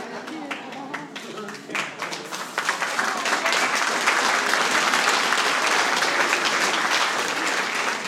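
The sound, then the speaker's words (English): A church audience breaks into applause as the sheriff comes in, starting as scattered claps that quickly swell into steady, loud clapping from many people, holding strong through to the end. “they clap when I leave and they clap when you come in.”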